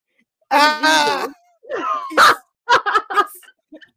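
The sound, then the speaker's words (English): A loud, wavering scream, muffled by being screamed into a bat, bursts out for under a second, followed by a rising strained wail and a few short choppy vocal outbursts that trail off. “Screams into bat.”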